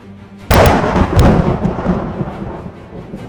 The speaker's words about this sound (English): He sort of starts moving his hand around and lightning sort of sparkles in his hand, and then he thrusts his hand forward towards it, and a loud explosion echoes from in front of him towards the creature, and he's casting Thunder Wave.